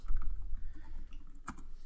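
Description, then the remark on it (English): Soft computer clicks and light taps sit over a low background rumble, with one sharper, distinct click standing out near the end as a link is clicked. Fairly quiet, with no talking. “I am going, though, to click on...”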